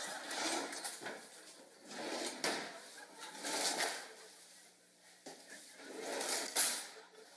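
A child repeatedly tugging at fake drawer fronts that won't open, producing bursts of rattling and scraping, rising and falling in waves over several seconds.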